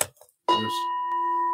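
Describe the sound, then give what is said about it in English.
A gong is hit once with a striker, with a sharp attack followed by a bright, steady metallic ring that holds without fading. A few faint soft sounds come just before the strike. “This striker is not a gong, but when this striker hits the gong, something else happens.”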